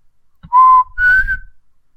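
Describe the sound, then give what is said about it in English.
An air-powered chime whistle, which starts chiming at around 35 psi, sounds two short, steady blasts, the second pitched higher than the first, each about a third of a second long, with a breathy rush of air underneath. “They start chiming around 35 psi. I don't think I could blow at 35 psi.”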